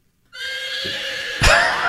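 A horse whinnies loudly, one long, high, wavering neigh that ends in a sharp, breathy snort-like burst. No voices or other sounds accompany it.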